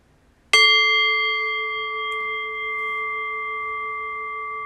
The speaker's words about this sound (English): So in a few moments' time, I'll ring the bell again. The invitation here, once again, is to rest awareness on the fading bell. And allowing both the bell and the pointer phrase to guide us into silence.